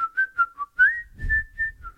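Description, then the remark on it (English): A bright, loud whistled melody hook of short repeated notes leading into longer sustained tones, whistled into a phone and set to a beat for a pop song, with a soft low thumping underneath. “I think it started with the whistle, the do do do do do, right?”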